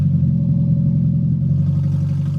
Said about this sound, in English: Here's what one victim told ABC when he realized he'd been hit. My engine made the loudest rumbling noise I think I've ever heard. A rumbling noise kind of like this.